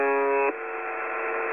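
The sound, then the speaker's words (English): A shortwave buzzer station's droning buzz tone, said to broadcast from Ukraine, harmonically rich and steady, turning rougher and noisier after about half a second and continuing at an even level, with no voices. “And you can imagine late at night, sitting in the dark, listening to this buzzing noise, wondering where it's coming from.”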